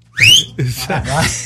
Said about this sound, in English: And it goes really quiet and you hear this whistle and it's me. So when you're listening to that album, oh my God.